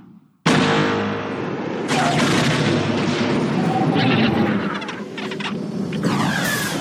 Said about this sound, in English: Next, we have potentially one of the most famous signature explosions in all of the Star Wars films. Jango Fett's seismic charge.